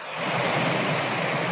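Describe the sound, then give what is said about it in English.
A steady, deep rushing brown noise recording that sounds like a flowing river, continuous and even after a brief fade-in, with no voices present. “This one is like rolling thunder, rolling rivers. So you feel how this one is deeper than the other one? Mm-hmm. Brown noise.”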